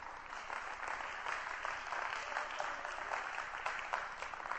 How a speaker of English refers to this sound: Let's give it up for them. Give them a clap.